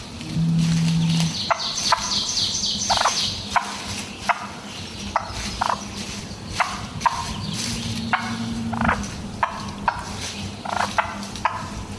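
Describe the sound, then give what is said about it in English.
A female turkey purrs in soft, low, rolling trills over a steady outdoor background dotted with sharp clicking and tapping sounds at irregular intervals. “Lady turkeys make sort of kind of a purring sound.”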